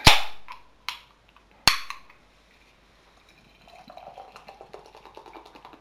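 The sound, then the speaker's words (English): Three sharp metallic cracks ring out, then after a pause beer glugs from a 440ml can into a Beer 52 Christmas Beer Festival glass with a soft, fizzy gurgle that pulses in a steady rhythm. The hazy yellow beer is brewed with Maris Otter, wheat and oat malts, Carapils, Simcoe and Galaxy. No one speaks. “So let's get this out into my glass and see what I make of it.”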